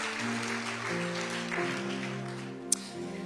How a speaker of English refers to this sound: Can we give this team a hand clap today for leading us into the presence of God? Thank you, guys.